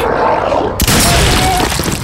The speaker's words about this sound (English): I worked the pump action, blasting the uninjured one in half at the hips, who came apart in a detonation of blood and bone and entrails that painted half the floor.